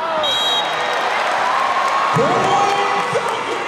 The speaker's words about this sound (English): A boisterous crowd of nearly 5,300 newly minted fans cheered the Valkyries in their first match. a competitive battle against the Atlanta vibe.